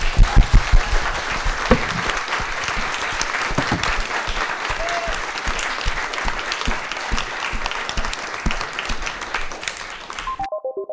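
An audience applauds loudly and steadily for about ten seconds, a dense wash of many hands clapping for two guests at a Margate Bookie lit fest event, then it cuts off and a few short electronic tones follow.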